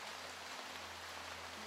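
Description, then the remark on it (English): Steady rain falls in a dense, even hiss that stays constant throughout, with a low continuous hum beneath it and no voices; rain sounds with ambient music, a soundscape for sleep. “You are listening to rain sounds and ambient music, Soundscape for sleep.”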